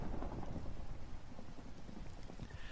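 Steady rain hisses and patters without a break, over a deep, rolling low rumble of thunder. The whole bed stays fairly quiet and even, with no voices.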